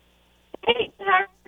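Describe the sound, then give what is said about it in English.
A radio call-in caller's voice comes through a bad phone signal on a thin, narrowband line in a couple of short, muffled bursts, sounding distorted and hard to make out. “Uh-oh, we got another bad signal.”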